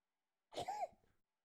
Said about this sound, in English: Sorry, I sneezed.